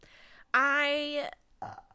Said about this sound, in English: I'm sorry, I had to burp. Yeah, we should have put that disclaimer at the top that we're both drinking White Claws, so there's a possibility for a lot of burping.